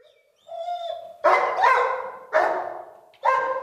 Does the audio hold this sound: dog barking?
yes